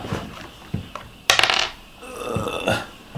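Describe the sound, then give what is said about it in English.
A ten-sided die rolled during a tabletop role-playing game rolls across a hard surface: a few sharp clicks, then a bright rattling tumble and some settling taps. Nobody speaks. “Can you roll a 1d10”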